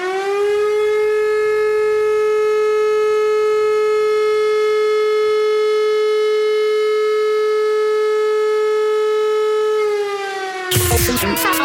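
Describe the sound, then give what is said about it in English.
A civil defense attack warning siren holds one loud, steady, buzzy tone for about ten seconds, sagging slightly in pitch at the end before a short burst of harsh noise cuts in. “This is an attack warning.”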